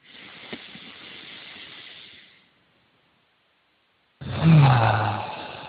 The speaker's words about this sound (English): Okay, let's take another nice deep breath.